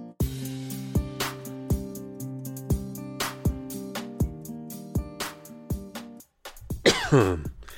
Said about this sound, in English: Today, I'd like to talk about coughs.